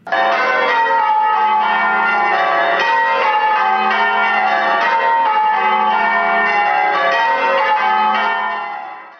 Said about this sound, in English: One of the first official ringers of these donated bells was the 15-year-old Paul Revere. They're now the oldest working chimes in America, and here's how they sound when they're rung after each Sunday service.